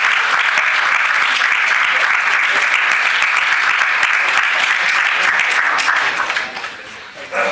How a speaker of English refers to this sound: Okay, so while I add up the scores, please give my fellow panelists a wonderful round of applause.